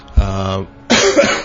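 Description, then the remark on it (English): A voiced throat-clearing rumble followed by a harsh, breathy cough, two loud bursts back to back with a brief pause between them. “Pardon me, I'm sorry, I've been coughing in all of your ears today.”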